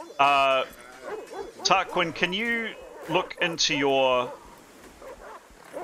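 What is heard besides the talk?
dog panting and whimpering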